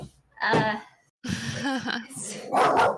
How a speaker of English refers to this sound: I think your dog disagrees with that statement.